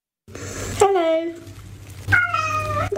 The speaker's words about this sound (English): All right, I'm going to play it for you. Pay close attention. Is this cat saying hello?